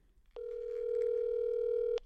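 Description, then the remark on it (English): A single steady telephone ringing tone as a call is placed to the speaker's sister holds for about a second and a half, clear and fairly loud, starting and ending with a soft click, with no voices around it. “I want to get one more person on the phone as far as the self-care conversation goes.”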